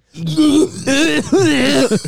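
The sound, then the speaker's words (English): Someone clears their throat in a few rough, voiced, gravelly bursts, ending with a short cough, loud and alone with no words spoken. “I can smell your cough.”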